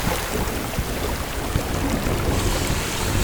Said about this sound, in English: Quick, Scout, activate the water hose kit. Water hose ready, sir. Great. Now point it at the machine and turn on the water.